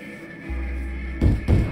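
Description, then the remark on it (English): Two heavy knocks land on a wooden shed door at night, about a third of a second apart, dull and booming, over a steady low hum that starts partway in. “A knock at the shed door, followed by a woman's voice, broke my concentration.”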